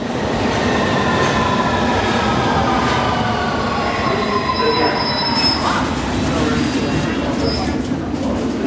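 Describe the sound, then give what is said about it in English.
A crowded underground train rumbles loudly into the station, its wheels letting out long, high metallic squeals that rise and fade over a constant low roar, continuous. “The train we're about to get on is quite crowded, so that should be fun.”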